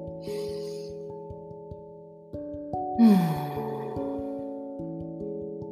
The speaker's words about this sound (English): Let's just take a deep breath together.